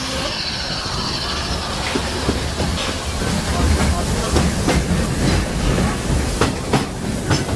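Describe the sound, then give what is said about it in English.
A train rolls steadily along the rails through the American wilderness, a continuous low rumble punctuated by a series of sharp, rhythmic clickety-clacks that grow a little louder and busier toward the end. “Nowadays, the rails can carry us safely through the wild”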